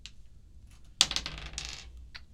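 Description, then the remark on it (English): Dice roll across a table for an attack roll in a game: a sharp initial clack followed by a second of quick, rattling clicks that tumble and then settle. No one speaks. “All right, roll for an attack.”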